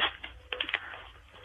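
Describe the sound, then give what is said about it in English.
A present being unwrapped: a few quick, crisp crinkles and clicks of paper or plastic in short bursts, fairly quiet, with no voices. “Are you unwrapping them? Yeah, I'm unwrapping them.”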